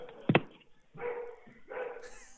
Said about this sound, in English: I mean, I got somebody at my front door, and now dogs are barking. Go get him. Go get him.